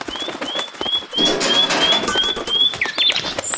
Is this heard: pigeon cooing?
yes